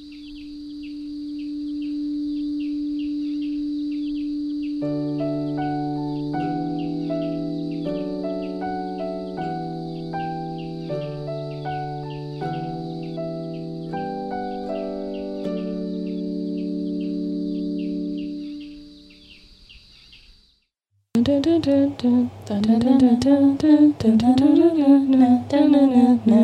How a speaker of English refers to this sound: Cue intro music. I've missed you, intro music.